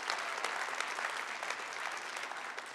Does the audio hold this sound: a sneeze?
no